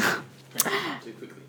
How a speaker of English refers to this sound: Our sound recordist is choking. Hang on a second. He's going away to cough. He's coughing. Bless. Oh, leaving the room to cough. So polite.